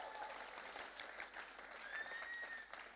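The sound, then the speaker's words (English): An audience claps steadily for a few seconds, a dense, continuous wash of many hands, with a faint whistle or cheer rising briefly above the applause. “You need to really clap and shout God.”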